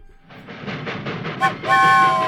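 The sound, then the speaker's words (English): Rhythmic chugging clatter of a train passing on railway tracks builds quickly, a brief hiss, then a loud, sustained horn-like blast. “It's a man train! Oh! Get off the tracks!”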